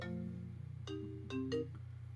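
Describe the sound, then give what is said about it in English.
A phone ringtone for an incoming call plays a short electronic melody of bright, clear tones, several notes rising over a steady low hum, fairly loud with no talking. “I had a phone call with Curtis's too.”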